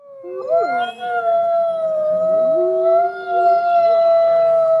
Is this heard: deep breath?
no